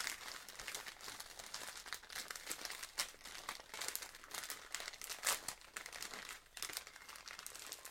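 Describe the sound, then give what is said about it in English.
Crinkling and crumpling of wrapping paper as a gift is wrapped, a continuous dry crackle with sharper bursts as the sheet is scrunched and bent, no voices over it. “Crunch it up and do a little bend.”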